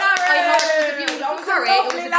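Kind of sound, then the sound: crowd, round of applause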